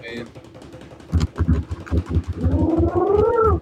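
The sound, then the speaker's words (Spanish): Low, throaty pigeon cooing comes in soft pulsing bursts, then turns into longer warbling tones that rise and fall in pitch, fairly loud with no talk over it. “Acá ese pinche paloma, ¿qué, güey? ¡Curruco! ¡Curruco!”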